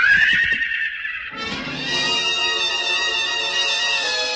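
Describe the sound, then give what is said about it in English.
A stallion rears high and lets out a loud, shrill whinny that shifts into a long, quavering neigh lasting several seconds, with no voices. “The stallion reared high, pawed at the gathering darkness.”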